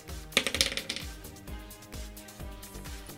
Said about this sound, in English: Let's roll some dice, see what we're talking about.